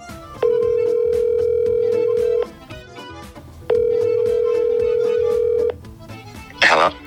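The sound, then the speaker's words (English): A phone call being placed to a guest: two long, steady ringback tones, each about two seconds, separated by a short pause, followed by a brief click-like burst near the end as the call connects. “So we're still doing social distancing, so let me get him on the phone real quick.”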